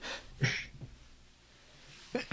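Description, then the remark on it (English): A sharp, hissing sneeze bursts out after a breathy intake, followed by quiet breathing and then another abrupt, loud burst of breath at the very end. “of course I have to sneeze.”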